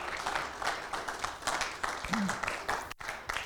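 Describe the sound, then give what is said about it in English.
A church audience applauds their pastors steadily, a dense wash of many hands clapping at once, with a brief dropout near the end before the clapping picks back up. “And please, let's clap for our pastors.”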